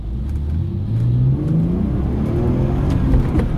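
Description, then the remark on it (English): A petrol car engine revs loudly, its droning pitch climbing steadily over a few seconds as it accelerates, with no voices. “The clattering engines and hand-cranked starting procedure was replaced with turnkey electrical ignition and multi-cylinder engines with superior power and smoothness.”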